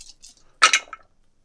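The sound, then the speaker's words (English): Four dice are rolled on a table, landing on 6, 6, 4 and 2; they clatter and tumble across the hard surface, with a couple of faint ticks, then a sharp burst of rattling clicks that quickly settles into silence. “I rolled a 6, a 6, a 4, and a 2.”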